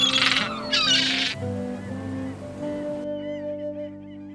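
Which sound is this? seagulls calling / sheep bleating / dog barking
seagulls calling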